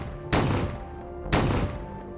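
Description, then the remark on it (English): Two sharp gunshots about a second apart, each a sudden loud crack that trails off into a ringing decay, fired by a lone gunman inside a house and heard from outside the house. No voices are heard. “No one knows what ensued inside the house, but within approximately 3 minutes, the witness and survivor outside the house heard gunshots.”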